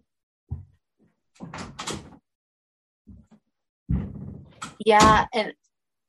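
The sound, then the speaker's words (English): A door is handled and opened to let a dog out, with a few knocks and rattles spread over several seconds, while muffled voices sound faintly around the movement. “So got to open the door, let the dog out.”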